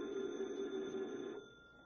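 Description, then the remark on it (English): A telephone rings once at a desk in a local police headquarters at night, a steady electronic trill lasting just over a second before it cuts off and fades, with no one speaking. “Detective Harry Parker is at his desk when the phone rings.”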